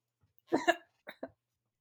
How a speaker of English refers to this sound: Yeah, I'll take that as a cough in the affirmative.